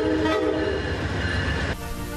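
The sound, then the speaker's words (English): A train horn blasts with a steady, loud harmonic tone over the deep rumble of a passing train, dropping slightly in pitch near the end. No one speaks. “Amtrak's train horns could be blasting through Central Ohio again for the first time in more than 40 years.”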